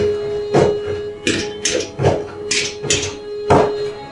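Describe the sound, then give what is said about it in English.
A toppled drawer bounces and rattles against the floor of a house scattered with debris, as if something were trapped underneath, giving about eight sharp, irregular wooden knocks over a few seconds, fairly loud with no voices. “And he looks over and there's this drawer that's been kind of toppled over and it's just kind of bouncing around. like something's trapped underneath.”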